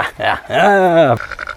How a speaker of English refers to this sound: Oh dear, it's not happy because of all the lamb talk. Don't worry, sheep, I'm northern. It's walking towards us.